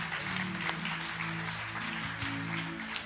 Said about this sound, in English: Give him a hand, guys.